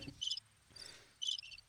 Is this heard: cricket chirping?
yes